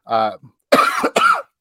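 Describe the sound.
A brief voiced sound, then two harsh, breathy coughs in quick succession, close and fairly loud.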